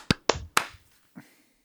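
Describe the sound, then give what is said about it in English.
Three sharp, loud hand claps in quick succession, made as a sync clap for a recording, followed after a short gap by a fainter fourth clap. No one is speaking. “Clap sync. Yeah. 3, 2, 1.”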